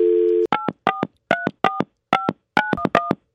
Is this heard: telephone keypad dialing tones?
yes